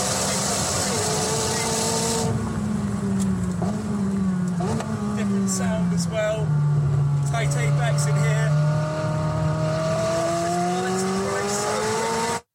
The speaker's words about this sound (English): I feel like it's a McLaren. It is a McLaren. Okay, it's a McLaren.